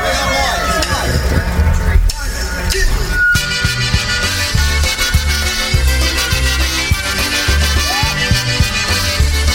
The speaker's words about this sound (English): Here's what's called Razbatse. 1, 2, 3, polka.